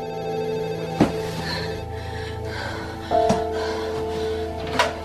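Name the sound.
telephone ringing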